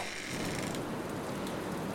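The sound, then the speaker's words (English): Rain and wind pour through an open window as a steady, dense hiss with a fine crackling patter, holding an even loudness throughout with no voices. “Is it raining horizontally? The rain and the wind. Open your window.”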